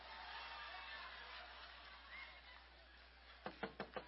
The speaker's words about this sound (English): Well, they're knocking. So what?